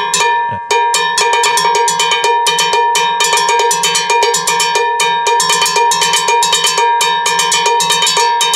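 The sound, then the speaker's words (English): A metal timbale bell is struck steadily with a stick in a quick, driving rhythm, each bright, ringing hit sustaining with strong metallic overtones, loud and alone with no voices. “And now I have this other bell over here because sometimes the timbale player has to do like two bells.”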